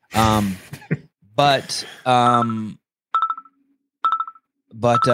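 A phone ringtone for an incoming call from Oklahoma plays: a loud, voice-like melodic phrase followed by two short, evenly spaced electronic tone bursts, with no talking over it.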